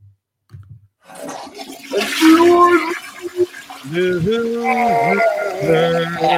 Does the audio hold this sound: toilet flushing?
yes